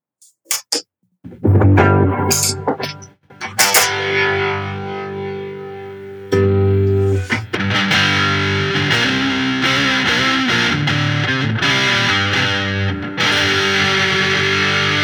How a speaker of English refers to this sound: Dude, that thing sounds just sick. You get the vibe. It's really cool. So it's more of a distortion. It's not an overdrive. It's distortion. It's a distortion. Yeah it's a distortion. It does a couple things. You can set it to saturation or normal.